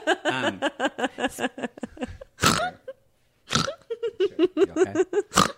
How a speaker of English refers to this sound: You okay? You're snorting now.